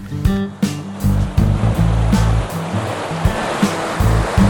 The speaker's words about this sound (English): I'm starting off noisy because I'm stood in a river.